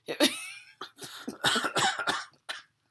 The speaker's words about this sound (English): And there's the cough. There's the cough. All right. But that's a funny cough